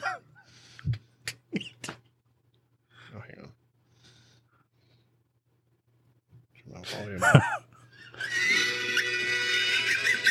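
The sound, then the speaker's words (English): The wheezy, snickering laugh of Muttley, an old cartoon dog: short raspy bursts and squeaky sniggers, a pause, then a louder burst of wheezing cackles ending in a long hissing, breathy rasp. “His laugh sounds just like it.”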